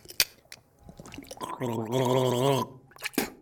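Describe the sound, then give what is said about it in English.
A wet, bubbling gargle of mouthwash holds for about a second, a throaty rattling warble, with a few small sloshes and clicks before and after. “When I'm sad, I need a good gargle.”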